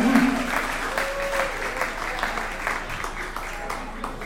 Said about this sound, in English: And give another round of applause to Mr. … on the alto saxophone.